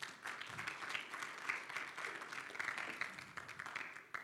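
A small group claps steadily for about four seconds, a dense patter of overlapping hand claps at fairly even loudness with no voices over it.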